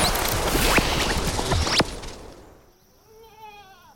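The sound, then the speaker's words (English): A sheep gives a wavering bleat near the end, in a sheep pasture on a ranch in 1947, after a stretch of loud, rough outdoor noise, like wind or rustling, that fades away. No one speaks. “Rancher Mac Brazel finds something unusual in his sheep pasture.”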